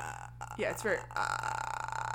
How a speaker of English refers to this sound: Sarah hears a growl in the tunnel that she's in. And we also hear what I am calling, like a grudge noise.